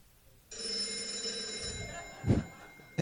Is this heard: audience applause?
no